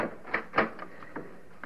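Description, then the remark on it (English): A heavy bar is worked loose and lifted off a door that was barred from the inside: a handful of irregular knocks and scraping clunks, one louder thud among them, with no voices. “Yes, I can feel a bar. Wait just a second and I'll get it off.”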